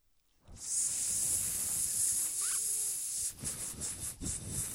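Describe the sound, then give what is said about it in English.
A sustained, airy snake hiss sound effect begins after a short silence and runs steadily for several seconds, loud, then breaks into uneven pulsing bursts near the end. “Yo, hit me with that snake and then I'll stop this.”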